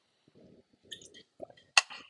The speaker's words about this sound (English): Sorry, just had a little sip of Fanta.